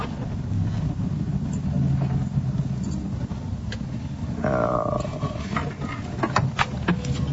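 A car pulls in at a hotel with a steady low engine rumble, a brief squealing whine partway through as it slows, then a few sharp clicks and knocks as it settles to a stop.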